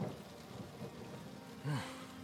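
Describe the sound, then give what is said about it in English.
Steady heavy rain drums on a deck overhead throughout, with a low rolling rumble of thunder swelling up near the end over the constant downpour. “Beginning to rise, the first thing he notices is the silence of the crew against the rolling clap of thunder, which occurs more often than is comfortable, and the heavy drum of incessant rain on the deck above.”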